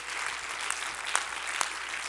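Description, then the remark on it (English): A church audience claps their hands in praise of God, a dense, continuous wash of applause, with a few sharper, louder claps standing out now and then. “Clap your hands and give God praise today.”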